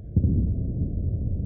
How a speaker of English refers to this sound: Then, the explosions begin.